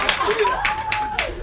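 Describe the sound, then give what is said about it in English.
A few scattered claps from an audience ring out at an uneven pace, with a voice and some tonal sounds continuing beneath them. “Don't clap that.”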